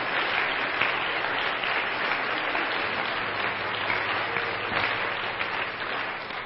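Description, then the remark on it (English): A church audience at a service claps together for visiting guests in a steady, dense, reverberant wash of applause that holds evenly throughout, with no voices standing out. “Why don't the home folks just give all of our guests a hand clap today?”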